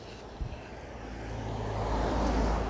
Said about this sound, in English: I mean, it is funny, I'm sort of annoyed about these cars, but I am on a road, so I suppose I can't really be too angry at cars because they're doing what they're doing.